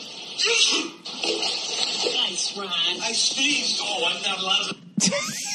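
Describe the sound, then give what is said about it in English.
People talk over a noisy, watery background, then near the end a man sneezes sharply, startling a cat by a pool, which jumps and splashes into the pool. “This guy sneezes, makes the cat jump and land in a pool.”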